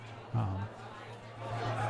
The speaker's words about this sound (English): It is just packed with people. And again, it still sounds like someone's trying to suffocate a jukebox in here. But the difference is that there's the actual like crowd, and the bar is packed, and people seem to really be into the tacos here.